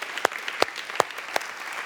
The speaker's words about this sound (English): Now, we've given a lot of hand claps this morning, but let's give Jesus the best hand clap we've given today. Thank you, Jesus.